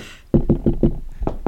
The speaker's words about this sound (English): pounding back at me at the door.